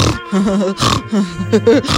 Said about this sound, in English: It's a bit like burping. Only because I'm snorting while I'm laughing and burping.